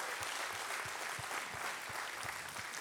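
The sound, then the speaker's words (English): A crowd of volunteers claps for themselves, celebrating 13 service projects and 387 service opportunities completed across their county, a dense wash of many hands with a few sharper claps standing out, sustained at a fairly even level without any talking. “Come on, give yourselves a round of applause.”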